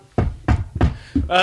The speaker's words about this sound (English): Oh, the dog looked over when I banged on the table.